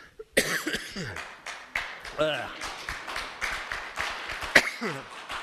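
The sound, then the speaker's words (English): A person coughs and chokes repeatedly, loud harsh bursts with strained gasping breaths in between, continuing for several seconds. “I'm not all choked up, I'm just choking.”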